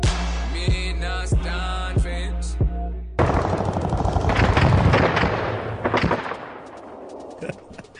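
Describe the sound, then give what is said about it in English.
Gunshot sound effects in a song, sounding like a .22 rather than a Mac 10: a few evenly spaced shots over a steady electronic hum, then a loud, dense burst of rapid-fire gunfire that gradually thins out and fades toward the end. “Yeah, those sound effects were not supposed to sound like that. I need to get new gunshots.”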